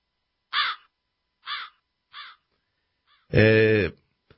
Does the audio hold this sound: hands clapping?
no